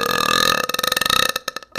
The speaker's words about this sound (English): Give out 10s for burps, but that was a 10. That was not a 10. That was a 10.